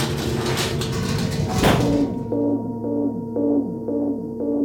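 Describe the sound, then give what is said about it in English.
A burst of clattering, rummaging noise as someone searches for his maracas gives way to a sci-fi exospheric disturbance alarm: steady, rhythmic electronic pulses, each a bright harmonic tone with a falling sweep, repeating about twice per second. “K9, that's the exospheric disturbance alarm, and I'm rather busy.”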